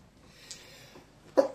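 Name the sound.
sneeze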